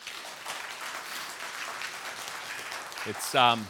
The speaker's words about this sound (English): Would you just take a minute, and if you have had at least one thing in the past week to feel joy about, would you just clap?